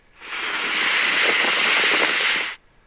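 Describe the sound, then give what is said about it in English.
Water of Niagara Falls crashes down in a dense, steady hissing roar, loud and unbroken for about two and a half seconds before cutting off abruptly, with no voices. “you can just hear that water vigorously crashing down”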